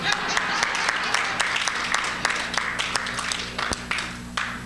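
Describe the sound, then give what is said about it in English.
A pub audience claps steadily, a dense wash of many hands with sharper individual claps popping out, holding strong throughout with a slight dip toward the end. “Andy Griffith, or Leave It to Beaver, can I get you to bang your hands together?”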